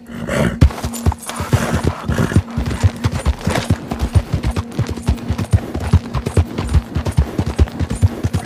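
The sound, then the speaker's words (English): Rapid, rhythmic hoofbeats of a galloping horse in a video game pound steadily, with a constant low hum and scattered clatter in the background; no one speaks. “I love this horse. This horse is so good.”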